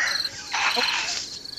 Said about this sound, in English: Nope. Okay. Crickets.